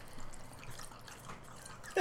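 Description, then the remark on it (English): Water trickles and drips quietly from a Chipotle cup for about two seconds, ending in a sudden louder splash as the pour lands, as water is poured for a dog. “I just started getting the dog water from my Chipotle cup”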